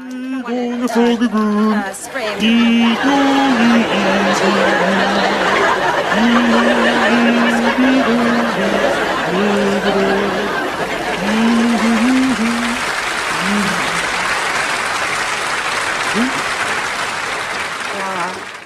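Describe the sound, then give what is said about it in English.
A loud laugh track: a studio audience bursts into sustained laughter and applause of recognition, a dense crowd roar with clapping that continues for nearly twenty seconds, while a voice speaks over it near the start. “It's a laugh and applause of recognition. It's like the entrance applause for the wacky neighbor in a sitcom.”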